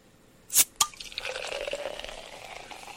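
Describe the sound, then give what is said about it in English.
Two quick sharp clicks, then a steady bright fizzing and crackling of prosecco bubbling in a glass after the cork is popped, with faint rising pouring tones underneath. It fades slightly, and no one speaks. “Oh, I meant like more like the bubbly sound.”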